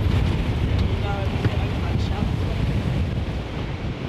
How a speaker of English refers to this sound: So windy.